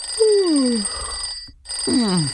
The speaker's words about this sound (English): Early one morning, when the sky was still dark, suddenly the telephone at the police station rang.